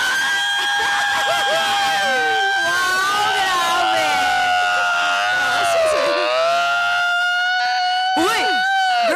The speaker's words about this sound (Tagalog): Sunog sa gawa? Parang alarm, girl.